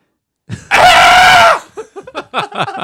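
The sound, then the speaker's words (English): A goat in a field, after being poked, lets out one loud, harsh, human-like scream lasting nearly a second, then short, choppy bursts of voice follow in quick succession. “We're in the field with the goats right now.”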